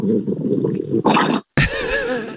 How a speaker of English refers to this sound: they've owned Brody, the French bulldog, since he was a puppy. Yeah, he's a noisy guy.